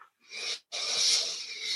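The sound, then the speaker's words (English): Two airy inhales through the nose as someone sniffs The Botanist, a Scottish gin made with 22 botanicals: a short sniff followed by a longer, steady breath in, both soft, hissy and without voice. “But what I'd like you to do is do your sniff test.”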